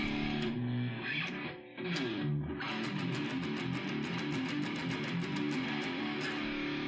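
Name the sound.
distortion effect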